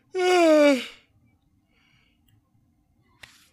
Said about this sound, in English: Sorry, I had to get that yawn out right there.